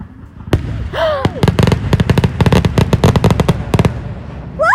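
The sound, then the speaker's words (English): A rapid barrage of Independence Day 2021 fireworks cracking and booming, dozens of sharp bursts in quick succession, loud and very near, with a brief whistling rocket early on and another at the end. “Happy Independence Day 2021 - Fireworks”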